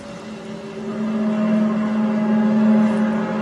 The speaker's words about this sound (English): So basically, those skyquakes could be us hearing the thunder from those storms, unless HAARP is actually the culprit here. Here's another skyquake noise.